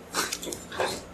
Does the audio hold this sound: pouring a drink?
no